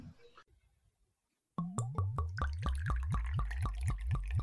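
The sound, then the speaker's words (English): Wine glugs from a bottle into a glass, steady, a quick rhythmic run of gurgling pulses lasting about three seconds after a short quiet pause, with no talking. “another glass of wine?”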